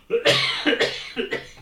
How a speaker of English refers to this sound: There we go. Sorry. You're having a cough attack anyway.